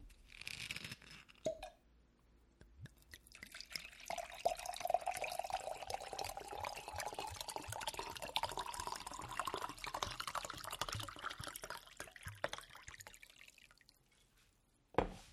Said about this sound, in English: pour me some wine.